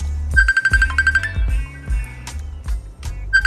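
An electronic telephone ring from a long-distance call from the UK trills in a rapid pulsing burst for about a second, then chirps again briefly near the end, heard over a thumping bass-heavy music groove.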